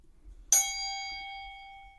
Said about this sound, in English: Dinging the bell.